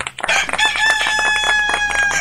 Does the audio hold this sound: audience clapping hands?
no